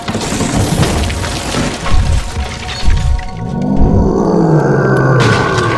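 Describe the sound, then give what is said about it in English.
A loud crash as a pub door is smashed apart by a creature made of snow, with splintering debris for a few seconds, then a deep, rumbling roar from the creature swelling up and holding to the end. “The door to the pub was torn apart as a creature made of snow smashed its way inside.”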